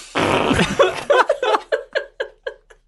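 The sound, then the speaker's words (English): A voice makes a loud, spluttering raspberry like a fart, acting out the pronunciation of the surname Ayscough, then breaks into a string of rhythmic, fading laughter bursts. “We now call Ayscough's farts.”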